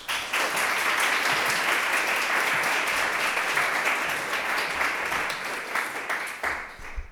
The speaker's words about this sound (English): And without any further ado, please can we have a warm Conway Hall round of applause for